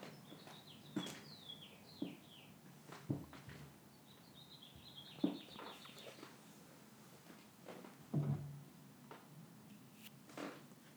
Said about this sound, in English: Some birds outside. Producers Melvin and Moose are not super fond of birds.